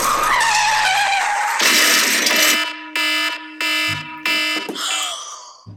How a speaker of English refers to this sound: She stepped onto the busy traffic, not losing sight of her big curly hair. So focused on ridding herself of this nuisance ruining her life, she didn't notice the car coming straight at her, sending her flying off the road.